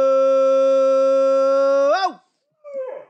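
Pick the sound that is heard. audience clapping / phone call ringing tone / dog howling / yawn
dog howling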